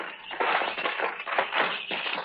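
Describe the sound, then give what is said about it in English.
A rusty door lock, rusted through, on the door of a windowless building being jiggled and worked, giving gritty metallic scraping and rattling that runs steadily for a couple of seconds with several louder grinding bursts, no voices. “Yeah, the lock's all rusted through.”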